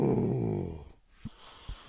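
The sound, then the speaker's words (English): Heavy breathing into a paper bag: a low, groaning exhale gives way to hissy, rustling breaths with a couple of soft crinkly puffs as the bag moves. “I am breathing into a paper bag.”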